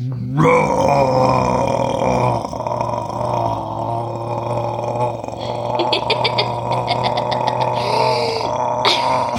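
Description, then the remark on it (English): A voice imitates a dinosaur with a long, loud string of guttural, burp-like grunts and groans, rumbling continuously for several seconds, with no words spoken. “That sounded like burps going together, just loads of burps.”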